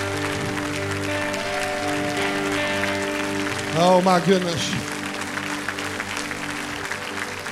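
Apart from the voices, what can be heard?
audience applause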